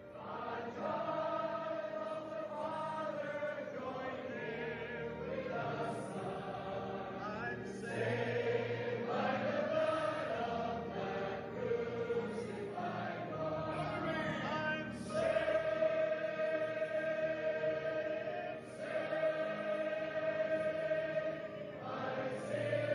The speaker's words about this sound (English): Now, this won't come through on our speakers, but the way that they sing as a congregation will blow your mind. If you can turn it up just a little bit for us.